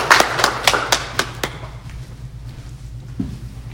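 A short burst of audience applause: a handful of sharp, scattered claps for about a second and a half, then fading into a low, steady background hum.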